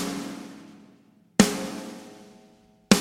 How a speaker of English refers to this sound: You take an isolated snare hit to get this sound, so an isolated snare drum will sound like this.